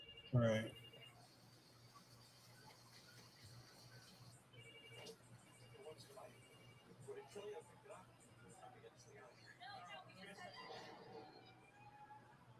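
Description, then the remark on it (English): A telephone rings with a steady, high electronic tone amid a murmur of background chatter and voices, after a sharp bump at the start. “Answer the damn phone, you idiots.”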